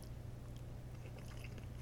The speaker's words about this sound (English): I'm going to do what I do real fast because I saved a couple of bites just so I can eat with a microphone in front of me because that's what I like. That's a whole part of me doing what I do. So here we go. Croak Madame.